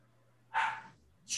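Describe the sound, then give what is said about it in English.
A dog barks twice, two short sharp woofs spaced about a second apart, over a faint steady low hum with no one talking. “As the dog barks in the background, this is dramatic stuff.”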